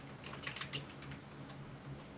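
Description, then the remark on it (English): Quiet, steady clatter of fingers typing on a computer keyboard, with rapid irregular key clicks over a low background hum and no voices. “Typing McTypeitstein there.”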